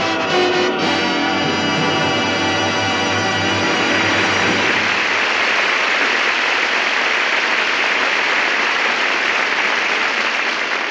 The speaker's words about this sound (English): that applause should tell you what a hit you've written. It was wonderful, darling.